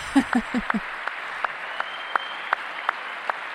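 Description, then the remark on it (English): Slow, sharp hand claps from a single clapper, a man applauding himself during a speech about veterans' health care: a quick burst of four, then steady, evenly spaced claps about every third of a second, each a loud crisp smack against a quiet hiss. “Clapping for himself.”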